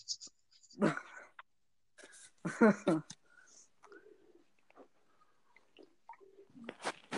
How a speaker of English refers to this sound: Why was a dog barking? Oh, there's a package, that's why.